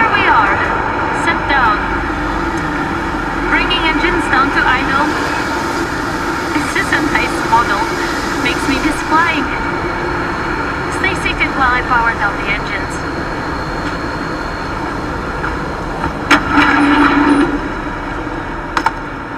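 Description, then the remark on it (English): A loud, steady helicopter engine and rotor roar fills the whole recording, heard from inside the helicopter during a landing with visibility of about 4 meters, with muffled voices and radio chatter breaking through the constant drone. “The recording from the helicopter cuts there, but the events from the landing pick up from the team's body cameras.”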